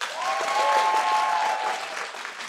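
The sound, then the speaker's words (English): A live audience claps in steady, dense applause lasting a couple of seconds in answer to a poll question from the stage, with a faint whistle-like tone drifting through the middle before the clapping thins out. “Okay, so by a round of applause, who here has heard the podcast before?”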